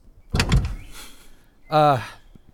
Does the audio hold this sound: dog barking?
no